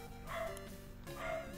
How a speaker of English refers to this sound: I think the dog disagrees with your 7.5. Yeah, I think so. Yeah. I think he says, that's Bullshit.